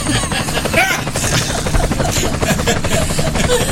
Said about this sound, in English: This is the Kaotic Radio traffic helicopter. We're going to fire it up for one more shot here.